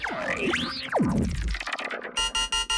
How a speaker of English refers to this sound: Jop's eyes fluttered open to an incessant beeping sound. She scrambled to her feet and scanned her surroundings. Everything was still a little foggy, but she saw a flashing red button, which she assumed was the cause of the infernal beeping.